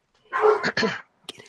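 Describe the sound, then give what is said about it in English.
A dog barks, two short rough barks in quick succession, followed by a brief fainter yelp or noise. “Get it out of here. The dog will. We have a new familiar.”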